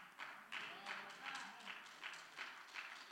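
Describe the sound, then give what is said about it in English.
An audience clapping lightly in a steady, even rhythm, roughly three claps per second, with soft crowd murmur underneath and no clear words. “Claps are getting lighter, especially among all the Facebook, TikTok, and social media gurus.”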